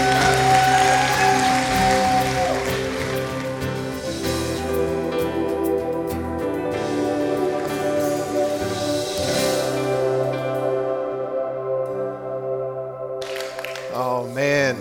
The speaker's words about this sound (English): So across all of our campuses, even online, can we just stand and not applaud the name of Hope, but applaud the name of our faithful God and His faithfulness and His power?